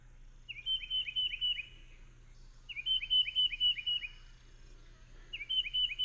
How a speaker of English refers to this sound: They're very territorial right now. They're working on having babies, and so that bird is just going crazy in urban areas or out in the woods. Let's listen one more time to the tufted titmouse.